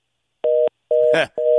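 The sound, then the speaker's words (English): A phone's electronic low-battery warning beep sounds three times in a steady pulsing pattern, loud, with a short crackly glitch over the second tone, as the phone dies and the call drops. “I thought his phone was dying. I thought I heard the beep, and so his phone died right there.”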